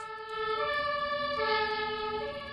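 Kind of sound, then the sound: vehicle, fire engine siren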